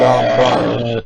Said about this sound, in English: You know, I don't care if you burp anymore.